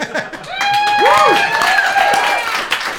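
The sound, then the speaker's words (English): Audience applause: a steady, loud wash of many hands clapping for about three seconds, with some whoops and cheering voices rising and falling over the clapping. “We do not have an applause sign here.”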